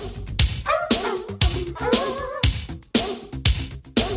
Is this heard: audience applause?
no